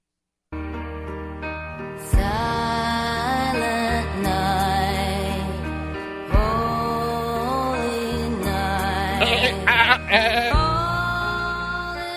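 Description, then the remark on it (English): Goat bleats are strung together into a bouncy Christmas melody over loud, full backing music, the wavering cries carrying the tune almost without pause for about twelve seconds. “Goat Girl Strikes. Yeah, you were not a fan of this song before the show.”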